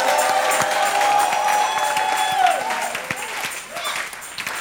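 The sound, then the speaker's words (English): A church audience in an auditorium bursts into steady clapping for Jesus, mixed with shouts and cheering voices, loud and dense at first, then gradually thinning out toward the end. “Receive the grace and the anointing upon your head and give Jesus a clap and a shout in the auditorium.”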